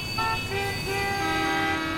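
Steady low traffic rumble with car horns honking over it, short overlapping toots at a few pitches, one starting about a fifth of a second in and another held tone sounding near the end.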